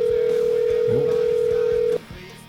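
A steady, continuous ringback tone from an outgoing phone call placed from a studio during a live show hums loudly for about two seconds, then cuts off abruptly, with a brief faint voice murmuring beneath it.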